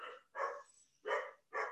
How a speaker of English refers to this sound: Can you all hear the dogs? The husband just came home to take the dogs out of the crate, so I wasn't sure if the mic would pick up the dogs or not.